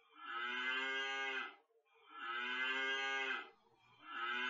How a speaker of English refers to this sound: That sounds like a siren. I didn't like that. That's a bad cow noise. Well, it was better than everything else that was coming up. Those are some cows having a fucking conversation.